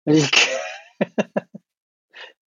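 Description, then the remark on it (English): A machine produces a loud, drawn-out sneeze lasting almost a second, followed by four short, sharp bursts in quick succession and then a faint breathy puff after a brief pause. “We made it this one smart enough to cough and sneeze at another person.”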